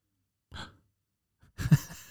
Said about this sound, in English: What a gasp. That was a good gasp.